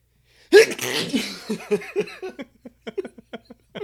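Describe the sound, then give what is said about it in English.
A loud sneeze bursts out suddenly, followed by a series of short, breathy laughs that taper off into quiet gasps. “Dude, I'm sneezing like a mofo.”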